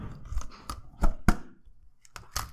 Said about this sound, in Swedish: Så nu ska jag helt enkelt dra en lapp ur burken för att avsluta avsnittet.